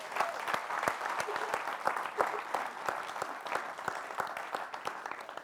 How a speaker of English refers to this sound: So I want to honor them. Could we give them a round of applause, please?